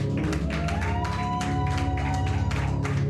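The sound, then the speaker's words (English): A church audience claps hands together after a prayer in a dense, continuous burst of applause, loud, with steady crowd noise and a faint hum of voices underneath. “I wish somebody would say a louder, stronger amen. Clap their hands.”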